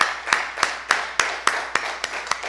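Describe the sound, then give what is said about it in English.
An audience at a church service claps in a steady rhythmic beat, giving a round of applause for Jesus, about nine sharp, even claps over a faint background hiss, with no talking. “How about a round of applause for our Lord Jesus?”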